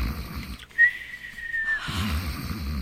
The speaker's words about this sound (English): you promised you wouldn't snore. And the minute you close your eyes, you start it.